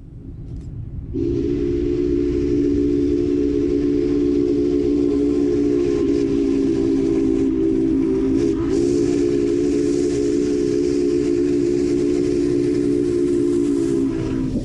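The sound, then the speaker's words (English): A steam locomotive whistle blows one long, loud, sustained blast for about thirteen seconds, with a breathy hiss of steam beneath its steady chord. No one speaks. “Now, listen very carefully to the whistle here.”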